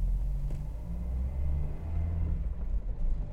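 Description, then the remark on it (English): A car engine rumbles steadily from inside a moving vehicle driving at night, a deep continuous drone with a slight rise and fall in pitch as it drives along, with no voices. “I'd never pulled over. I'd never actually seen my dad's patrol car. I was still driving.”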